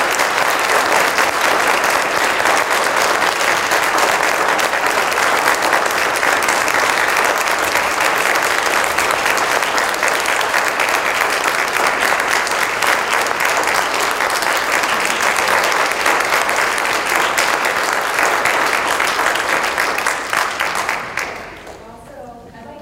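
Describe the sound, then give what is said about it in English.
Loud, sustained applause from a large crowd standing to give a standing ovation, a dense steady roar of clapping lasting about twenty seconds before fading out quickly at the end. “So if you can all join me in standing and giving them a round of applause.”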